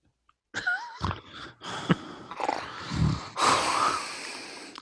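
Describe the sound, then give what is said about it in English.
Heavy breathing right into a microphone, a run of loud, rough, noisy breaths and snort-like exhales filling nearly five seconds after a brief silence, with no talking. “Well, all we hear is your breathing.”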